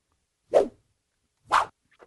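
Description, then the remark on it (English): Two sharp whip cracks about a second apart, each a quick swishing snap, followed by a fainter flick. Fairly loud, with no voices. “Something about the sound of a whip cracking makes me laugh a lot.”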